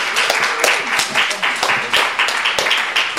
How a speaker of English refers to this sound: Put your hands together and make a big round of applause for Davy Rothbart and Ada Calhoun. Yay!